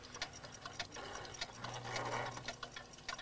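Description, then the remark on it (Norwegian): A dense, overlapping chorus of clock ticks from many wall clocks, irregular and out of sync, fairly quiet with a faint low hum in the middle and no voices. “Det er jo alle klokkene på veggen.”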